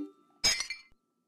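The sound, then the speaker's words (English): Glass breaks with a sudden sharp crash, followed by a brief scatter of tinkling shards that settles within half a second, then silence. Fairly loud, with no voices. “I think it's glass, and that's really dangerous. You're right, Marcus. It is glass.”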